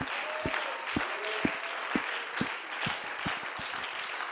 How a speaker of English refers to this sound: Come on, clap your hands.